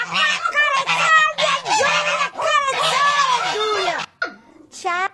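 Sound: duck quacking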